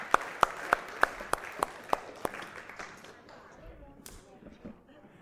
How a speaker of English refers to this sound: Well done, everyone. Round of applause for you guys.